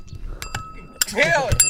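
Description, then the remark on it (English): A bell struck several times in quick succession, each hit a sharp metallic ding with a bright, lingering ring, while excited voices shout and cheer over the later strikes. “Hit the bell!”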